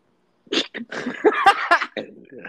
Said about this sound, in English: That just made me laugh burp.